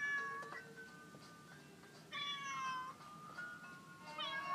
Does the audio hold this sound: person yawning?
no